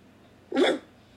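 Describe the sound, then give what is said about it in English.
A single short, sharp dog bark imitated by a human voice, clear, standing alone against a quiet background. “… just gave us one!”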